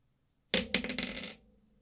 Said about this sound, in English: All right, well, I guess we have to roll some dice. Yeah, let's do it. That's a D6 these days.